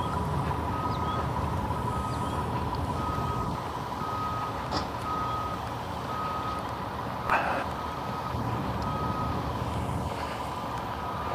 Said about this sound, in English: Ah, yes, concrete pour day. The pouring, they're going to pour concrete today, not a deficit of concrete. The sidewalks have been prepped, the forms laid. Cement truck is here.